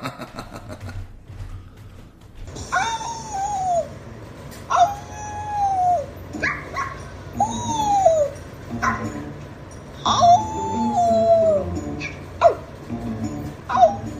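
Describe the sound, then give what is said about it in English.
Dogs walking around whine and whimper in repeated high, wavering cries, with scattered clicking sounds like paws moving about between the whines. “Can y'all hear the dogs walking around?”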